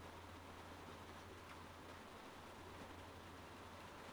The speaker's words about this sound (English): And if you do hear any background noise, that it's the beautiful rain on the roof of our tiny home where my partner and I live. It sounds beautiful.